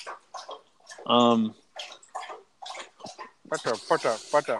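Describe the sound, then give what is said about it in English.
A thirsty dog laps and splashes at drinking water, gulping, a run of quick wet slurps and sloshes, with voices talking over parts of it. “Bear's getting a drink of water right now. Hopefully you can hear that splashing. I can hear him gulping.”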